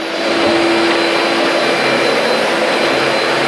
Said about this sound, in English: testing the vacuum to see if it has any kind of uncontrollable noise